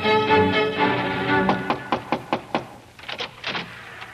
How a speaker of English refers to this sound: A few weeks later, while you were down playing on the shore, there was a knock at the lighthouse door.